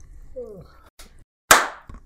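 A few sharp hand claps, irregularly spaced: one loud, crisp clap stands out between two softer ones, with a brief vocal sound at the start.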